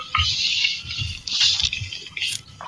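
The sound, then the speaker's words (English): A laptop fan whirs with a harsh, hissy rasp, rubbing against something and producing a steady rhythm of soft low thumps about twice per second. No one speaks. “The fan is rubbing on something.”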